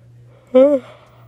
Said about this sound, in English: Excuse my yawn. Sorry, I yawned in your ear.